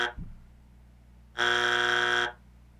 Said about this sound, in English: Call it a boring buzzer.